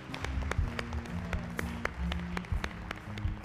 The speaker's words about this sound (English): Can we give Jesus one more hand clap of praise?